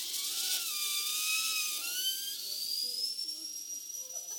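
An air compressor hisses steadily as it inflates a balloon, a loud continuous rush of air with a thin whine that climbs gradually in pitch, with no one speaking.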